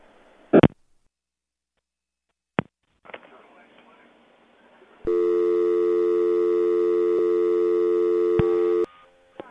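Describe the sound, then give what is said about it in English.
A few sharp clicks and some rustling handling noise, then a steady, unbroken telephone dial tone, played deliberately to the other party during a phone call, hums loudly for about four seconds before cutting off abruptly. “I was playing the dial tone for you.”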